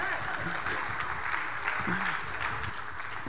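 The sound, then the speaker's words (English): Steady audience applause for a couple who just won a prize fills the whole stretch, a dense even patter of many hands clapping at moderate loudness, with faint voices murmuring underneath. “Can you clap for them?”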